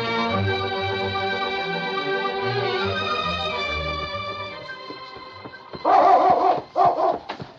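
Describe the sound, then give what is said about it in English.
A dog named King barks in a quick cluster of loud bursts near the end, after a long stretch of high, wavering, whine-like tones, drawing a sergeant's attention to a young Indian man lying beside a trail. No one speaks. “It was King's barking that called the sergeant's attention to the young Indian lying beside the trail.”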